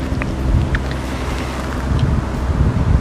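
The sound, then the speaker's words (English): Steady wind on a windy day outdoors during aircraft spotting buffets the microphone, a loud, continuous low rumble with gusty fluctuations lasting the whole stretch, no voices present. “Simply because of the windy weather and the neighbors.”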